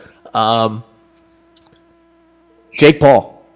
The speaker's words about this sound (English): Sorry if there's a little buzzing in the background ahead of time, but my mic is, there's something wrong with it. I got to get it fixed.